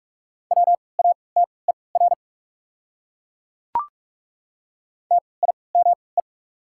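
Fast Morse code at 45 words per minute with triple character spacing, sending common words: steady mid-pitched beeps in two quick bursts of dots and dashes, separated by a long silent gap broken by a single sharp click.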